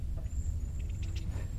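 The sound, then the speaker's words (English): A steady, low droning rumble of a plane or helicopter passing overhead in the distance, with a few faint, brief high chirps over it and no talking. “You can hear another plane.”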